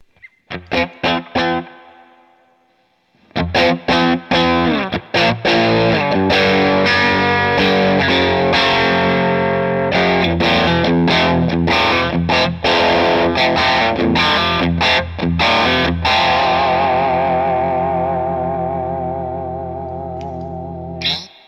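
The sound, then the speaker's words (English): A heavily distorted electric guitar played through a tube preamp pedal plays loud, sustained chords and riffs, thick and saturated with a long ringing tail fading at the end; no one speaks. “It's in consideration to have two of those and switch between, because the distortion on that is really.”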